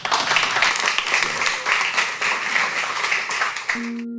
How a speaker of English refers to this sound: Big round of applause for Andy.